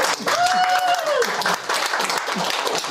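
A crowd applauds steadily for the full stretch, a dense wash of many hands clapping at a fairly loud level, with a brief whistle rising over it near the start.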